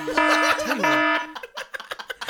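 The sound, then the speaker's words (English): A loud, harsh siren sound effect blares for just over a second, its buzzy layered tones wavering and sliding in pitch, then cuts off as people start talking. “Why the obnoxious siren?”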